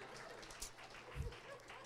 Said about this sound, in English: Let's clap that. Come on.